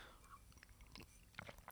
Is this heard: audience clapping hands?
no